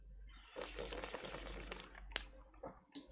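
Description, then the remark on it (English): Soft wet slurping of someone sipping a drink, a hissy stretch of sucking air and liquid broken by small clicks and swallows, fairly quiet with no talking. “I'm just gonna sip.”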